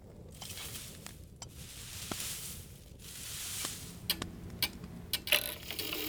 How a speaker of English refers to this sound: A cuckoo clock? That's right.